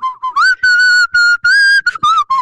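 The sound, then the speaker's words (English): A person whistles the melody of a 1976 song, a string of clear pitched notes rising and falling in quick phrases with brief gaps between them, and no talking. “I was going to say it before you whistled it because you said tragedy.”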